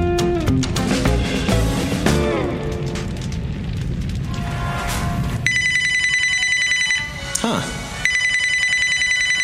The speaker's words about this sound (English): Heard this ringtone before.